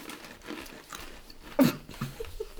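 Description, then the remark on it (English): A person eating makes wet chewing with irregular crunchy bites, one louder crunch standing out midway, followed by a few softer mouth sounds; no one speaks. “Can you hear me chewing?”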